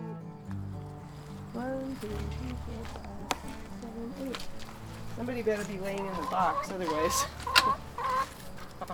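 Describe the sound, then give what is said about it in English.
Chickens cluck and chatter in a backyard coop behind a house in Lyons, a steady stream of overlapping calls and squawks that grows busier and louder toward the end, with a low background hum underneath. “chickens have returned to live in their coop behind her former house.”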